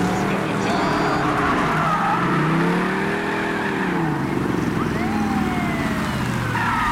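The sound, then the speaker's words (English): Engines roar and rev through a dense, continuous wash of traffic noise while tires squeal in rising and falling arcs, a loud car chase with repeated skidding, from the Nash Bridges film. “Are you going to let some app tell us how to do a car chase?”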